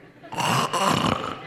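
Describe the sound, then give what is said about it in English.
A voice imitates a loud, rasping snore, two drawn-out rattling breaths, lasting about a second before trailing off. “You know, one thing good about that snoring, it's consistent, okay?”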